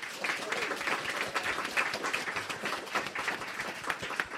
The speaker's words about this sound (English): You're listening to a special edition of The Naked Scientists from the Cambridge Science Centre with our wonderful studio audience. Give us a round of applause.